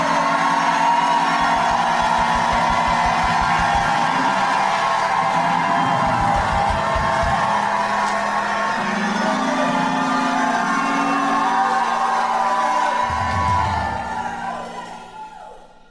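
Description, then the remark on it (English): A large audience at a sermon jumps up and erupts in loud, sustained shouting and whooping, a dense roar of many voices that holds steady for several seconds before fading out near the end. “Now, if you believe it, jump up and shout like you never shouted.”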